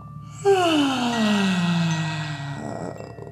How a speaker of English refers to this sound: As you inhale, reach your arms up. And then exhale, big yawn.